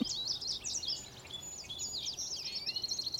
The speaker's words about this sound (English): There's goldfinches calling overhead.